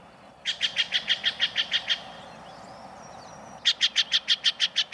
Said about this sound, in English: This loud, raucous call belongs to a common jay of the western states, the Steller's jay. You might mistakenly call this bird a blue jay, seeing its bright cobalt blue body.